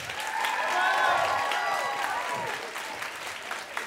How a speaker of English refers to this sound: And then also clap if you've heard our show before.